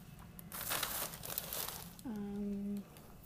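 Crackly crinkling of paper being crumpled for about a second and a half while someone sorts through unneeded papers, followed by a short steady hum-like tone near the end.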